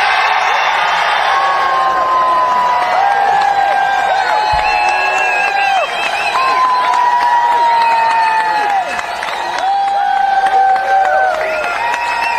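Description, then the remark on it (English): A large crowd at a Kennedy 2024 rally, where Kennedy declares himself an independent candidate, applauds and cheers steadily, dense clapping mixed with whoops and shouted voices, loud and sustained throughout. “Pretty decent-sized crowd there.”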